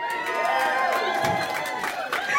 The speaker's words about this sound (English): One more round of cheering and then I'm going to call it. If you thought the affirmative won the debate tonight.